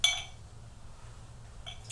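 Champagne being poured into a glass: a bright ringing clink of glass opens the moment, a quieter stretch with a low steady hum follows, then a second sharp glassy clink near the end.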